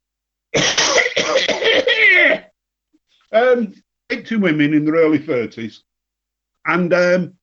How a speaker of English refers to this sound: Excuse me, I'm just going to have a cough.